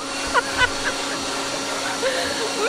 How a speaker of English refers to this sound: I got myself a 16 amp leaf blower.